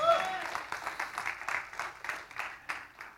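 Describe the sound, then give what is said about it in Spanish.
A few people give a soft, polite golf clap, the claps landing in a loose, steady patter for a few seconds, with a brief voice fragment at the very start. “Aplauso de golf.”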